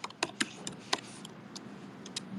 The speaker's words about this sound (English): Do you hear them typing in the background? They're typing as furiously as we are.